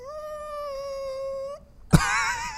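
An exaggerated, drawn-out vocal yawn: a long steady moaning tone that swells slightly, breaks off, then ends in a sudden breathy burst and a rough, sighing exhale.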